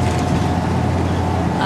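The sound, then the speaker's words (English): A steady low engine rumble and road drone from inside a moving city bus in Mississauga, continuous and fairly loud, with faint voices murmuring underneath; riders are waiting to get off at the Mattawa stop. “On the Mississauga bus, and we're waiting to get off on Mattawa so we can go to Monte Carlo.”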